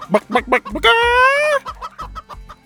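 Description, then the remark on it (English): A person flaps their hands and imitates a chicken, with a few quick clucks, one long drawn-out squawk, then more short clucks in an uneven rhythm, loud. “… flapped his hands and clucked like a chicken”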